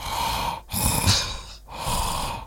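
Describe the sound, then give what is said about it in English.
A voice imitates the heavy, mechanical breathing of a sci-fi villain: slow, loud inhale and exhale cycles with brief pauses between breaths and no talking. “And that's actually my breathing voice after 2 vaccinations.”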